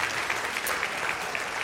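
A crowd applauds steadily, many hands clapping in a dense, even wash of sound at moderate volume with no voices rising above it.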